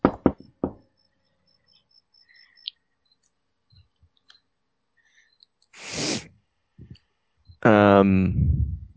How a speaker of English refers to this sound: you are awakened by a light rat-a-tat-tat at your door.